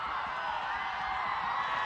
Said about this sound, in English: The student section is screaming right now.